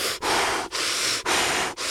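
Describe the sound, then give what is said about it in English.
Loud heavy breathing of a person taking a cold shower, in a quick, steady rhythm, with about four forceful, hissing breaths in a row separated by tiny pauses. No one speaks. “We live in an apartment in downtown Austin and she hears me take showers and she always knows that I'm taking a cold shower because she can hear me breathing.”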